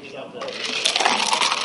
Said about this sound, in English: All right, so we've got that beautiful shake going on. And now you're going to see us adding the ice in.